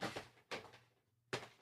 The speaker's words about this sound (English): I'm opening a drawer, folks.